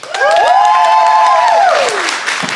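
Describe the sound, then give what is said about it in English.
The McClunkath Comedy Festival audience bursts into loud, sustained applause to vote for one side of a debate, with whoops and cheering voices rising over the dense clapping before it begins to fade. “So if you think Ben and Mike, and therefore Teresa, is in the right, would you applaud now?”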